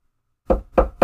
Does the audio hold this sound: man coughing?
no